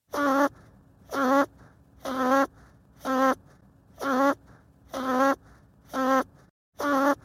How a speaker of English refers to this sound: Any guesses on what that was? That's actually an archival recording I have of my father snoring that I sped up 20 times. So, probably pretty tricky for you to guess.